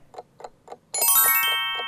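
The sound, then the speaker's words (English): A quiz countdown clock set to two minutes ticks at a quick, steady pace, about four ticks a second. Partway through, a bright, sustained ringing tone swells in and holds while the ticking carries on beneath it. “2 minutes are on the clock, and it starts now.”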